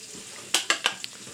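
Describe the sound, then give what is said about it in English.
Liquid is poured for shots in three quick, splashy bursts followed by a fainter fourth, fairly loud over a quiet hiss, with no one talking. “Pour him one.”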